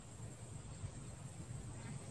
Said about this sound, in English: I hear crickets.